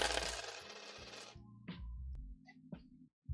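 Coins pour and clatter in a dense metallic jingle for over a second, then a few separate coins clink and settle one after another. No voices.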